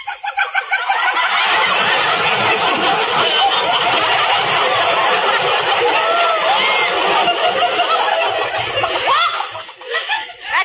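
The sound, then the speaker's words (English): A person imitates a clucking hen with rapid, loud, continuous squawks and clucks, sustained for about ten seconds and fading briefly near the end, with a chuckling quality. “Does imitations.”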